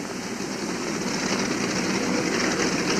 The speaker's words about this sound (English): At Florida and island bases, Navy, Weather Bureau, and Air Force planes are warming up to their daily task.